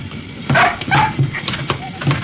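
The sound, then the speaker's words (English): A dog yelps and whimpers in a handful of short, high-pitched bursts spread across a couple of seconds, moderately loud, with no clear talking, as it and a man try to get through a small plane's door at the same time. “Trouble is, him and the dog tried to make it at the same time.”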